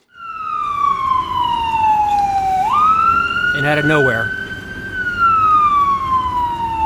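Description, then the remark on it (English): A loud emergency siren from an ambulance and fire truck arriving at a road accident wails, its pitch sliding down, jumping up, then falling again, while a person speaks briefly over it midway through. “an ambulance and fire truck appeared.”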